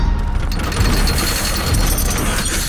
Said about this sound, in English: It's working. Door's rising.